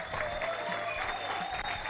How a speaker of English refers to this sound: Please clap your hands